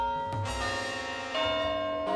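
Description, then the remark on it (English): A clock strikes 5:50 with resonant bell-like chimes, a few struck notes spaced about a second apart, each ringing on and overlapping the next. No one speaks. “The clock strikes 5:50.”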